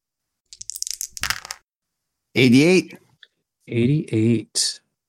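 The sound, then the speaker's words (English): A quick clatter of percentile dice rolled across a hard surface for about a second, crisp, followed by a few short voiced sounds from a person. “Another percentile dice.”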